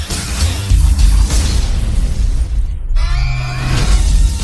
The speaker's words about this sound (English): Light the firecracker.